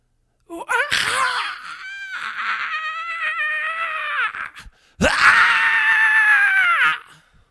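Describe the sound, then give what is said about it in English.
Two long, loud, strained screams, the first lasting about four seconds and the second shorter after a brief gap, with a harsh, throaty edge and no talking around them. “When it got faster and faster and faster, then it came with a deep, guttural screaming.”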